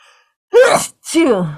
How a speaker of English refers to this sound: Bless you.